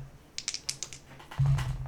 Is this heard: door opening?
no